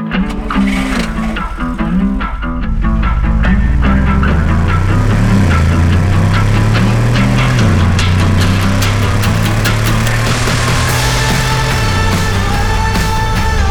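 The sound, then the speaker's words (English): A car engine drones steadily while driving, its low hum shifting pitch a few times as if changing gears, with road noise and scattered clicks layered over it and no one speaking. “Why don't we cut out the middleman? I can drive you.”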